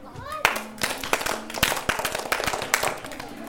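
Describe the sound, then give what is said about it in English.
A group claps hands together in a loose, repeating rhythm, clapping along to a children's song about God's promises to Abraham. The claps are sharp and fairly loud, with scattered voices, including children's, chattering underneath. “You guys remember the clap for this, right? How's the clap go?”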